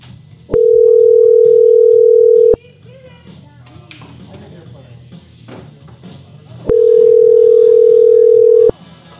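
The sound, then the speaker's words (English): Two long, steady ringback tones on an outgoing phone call to an old cell phone number, each about two seconds, separated by a four-second pause. Faint background chatter fills the gap. “All right, let's call my old cell phone number. Here we go.”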